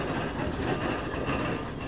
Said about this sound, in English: The engine's working hard as we've just turned off down into Manners Road.